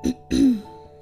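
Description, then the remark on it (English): A person clears their throat twice, fairly loud: a short rasp followed by a longer, gravelly one, with a quiet pause after. “I want to cough.”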